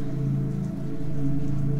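Steady rainfall hisses continuously over a low, droning hum, with no pauses or individual drops standing out across the short stretch, and no voices.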